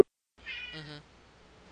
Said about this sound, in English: Is that a cat I've been hearing? Yeah, he won't shut up. He's hearing meow, meow, going on in the background.